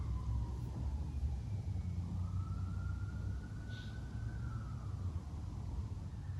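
A siren wails in a slow, drawn-out rise and fall, thought to be a siren test held on Saturdays at the same time, faint against a steady low rumble of background noise, with no one talking.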